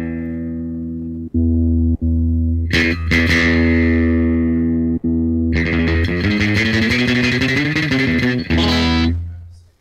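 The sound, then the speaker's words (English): A loud, reverb-soaked electric guitar with built-in computer hardware emulating a Fender Stratocaster, using surf reverb, plays a surf rock riff: ringing low notes, a quick slide, then rapid tremolo-picked runs that fade out at the end. “This is, right now, this guitar has a, you know, hardware in it, computer hardware, that is emulating the sound of a Fender Stratocaster, because I don't have one here.”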